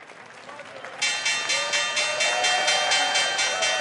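The New York Stock Exchange bell starts after about a second of low crowd murmur and rings loudly and continuously, a bright metallic clang pulsing in rapid, steady strokes.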